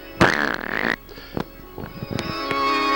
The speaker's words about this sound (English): Oh, Master, you stink again. Sorry, Igor, I've got gas. That's why they call me Count Fartula. Oh, Master, we got to get you some Beano. Oh, don't worry. I don't mind farting.